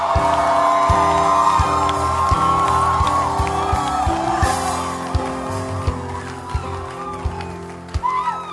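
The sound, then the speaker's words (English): A large crowd screams and cheers in a loud, sustained roar, many voices whooping at once over a steady thumping beat, easing off slightly near the end. “Are you clapping or you are pretending to clap? Keep screaming! Keep screaming!”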